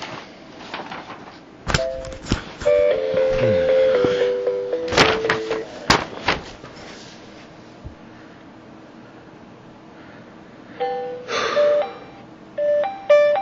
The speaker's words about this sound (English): Nice fucking ringtone.